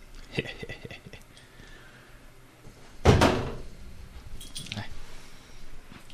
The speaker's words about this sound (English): Wait, was that the door to the closet? Lock him in the closet.